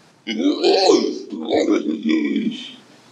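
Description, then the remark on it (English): A man's voice imitates a crocodile shouting down a waterfall: a loud, growling roar in three rough bursts over about three seconds, guttural and strained, with no other sounds around it. “This crocodile looks at him, sneers, and he shouts down the waterfall.”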